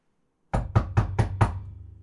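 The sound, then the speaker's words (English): Five quick, evenly spaced knocks on a shed door, fairly loud, each with a solid wooden thud. No voices accompany them. “Don't make me do doors as well.”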